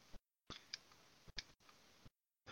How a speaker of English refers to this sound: Okay, look at the... there's a number of animated GIFs on there. Okay. Clicking on it now.